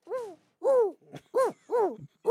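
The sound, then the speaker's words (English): A person imitates an owl hoot with a quick series of about five wavering, hooting vocal calls, evenly spaced with short pauses between them. “I just like looking at the owls when they hoot, okay? Okay, give me a hoot.”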